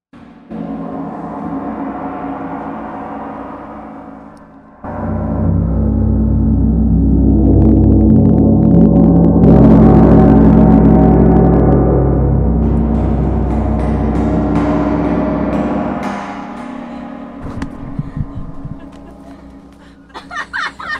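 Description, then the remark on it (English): A gong struck loudly right at the microphone, its deep, shimmering roar swelling and sustaining for over ten seconds before fading, with quieter sounds before and a few sharp knocks after. “You put a gong right up to the mic and my ears.”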